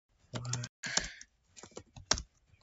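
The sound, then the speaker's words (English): Quick bursts of typing on a computer keyboard, a cluster of rapid clacking keystrokes followed by a pause and a few more scattered taps, fairly quiet with no talking. “Oh my god, I'm so bad at typing.”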